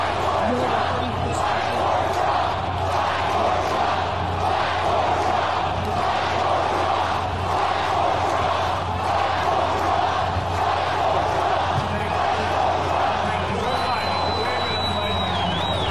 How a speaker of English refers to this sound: Man, I get the chills every time I hear that. Imagine 2 million people yelling and screaming, fight for Trump.